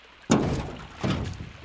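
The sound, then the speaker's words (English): Two heavy, flat slapping thumps of big flippered feet waddling across a boat deck land about three-quarters of a second apart, fairly loud, each with a short hollow ring. “It sure is hard to waddle around with these great big flippers on my feet.”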